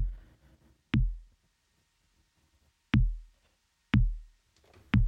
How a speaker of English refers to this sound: I'm going to start with the Entity Percussion from SSF. It's my favorite drum module to date. So let's just give it a nice little four on the floor really quick.